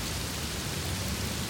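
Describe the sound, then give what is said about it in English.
Steady, heavy rain pours down in a dense, continuous hiss with no pauses, the downpour enveloping, with no voices present. “And now he's laying on the cold pavement, bleeding out in the pouring rain.”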